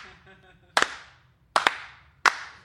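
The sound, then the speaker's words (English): Slow, deliberate hand claps ring out as a slow clap, about four sharp, loud smacks spaced roughly a second apart, with a faint murmur of voice before the first. “And they're clapping. And they're clapping.”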